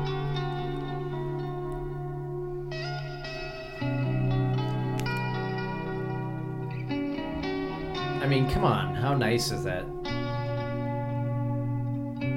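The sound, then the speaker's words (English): A clean electric guitar rings out sustained chords with shimmering echo, holding each tone for a few seconds before changing, while a man speaks briefly over the music near the end. “It's really clean, nice guitar.”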